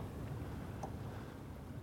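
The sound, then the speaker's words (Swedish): Water softly sloshes against a boat's hull out on an open bay, with glittering, uneven waves under a steady, lukewarm wind rumble, and one faint small splash partway through. No voices. “Det skvalpar mot båten här ute på fjärden.”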